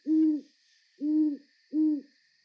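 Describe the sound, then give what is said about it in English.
An owl hoots at night outside the window of a home backing onto a forest on Vancouver Island, three calls in a slow, even rhythm, each a low, rounded tone, against a faint steady hum of night insects in the background. “The other night, I woke up to the sound of an owl outside my window.”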